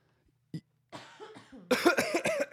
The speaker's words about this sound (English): New drinking game for this episode. Drink every time I cough.